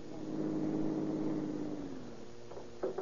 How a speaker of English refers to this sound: Finally, the Count arrives in a lonely area and drives over a field toward a steep hill. At the bottom of the hill, he stops his car and waits for Captain Chitwood.